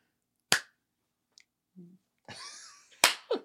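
A single sharp hand clap breaks the quiet, followed by soft thuds and a rustling shuffle, then another crisp crack near the end.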